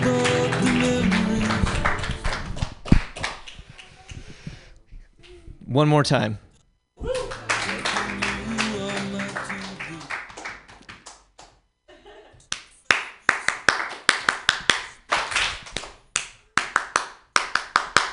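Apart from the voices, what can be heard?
audience clapping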